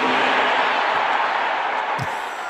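A large crowd of Sooner fans at a celebration roars and cheers loudly in response to Brent Venables talking about the defense, a steady, dense wall of noise that holds for the whole stretch, with a single dull thump near the end.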